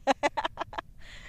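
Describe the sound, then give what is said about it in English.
A quick run of about six harsh, clucking bird calls in steady rhythm, fairly loud outdoors, followed by a brief hissy rustle with no talking. “Bro, the birds are fucking They've crazy. Got a lot to say today.”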